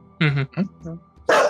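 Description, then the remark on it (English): A small dog gives a few short, sharp barks in quick succession, loud, ending with a harsher, breathier bark. “Puppy dog.”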